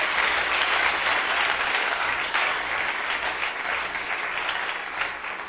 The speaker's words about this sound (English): Clap your hands for the Lord. Oh, give the Lord a wonderful clap of hands.